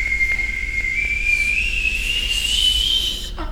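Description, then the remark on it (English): A single sustained whistle through the teeth, thin and breathy, slowly rising in pitch over about three seconds before cutting off. It is fairly loud, with no talking. “I can whistle through my teeth as well.”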